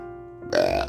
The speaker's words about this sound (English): I got a truth burp. I got a truth burp.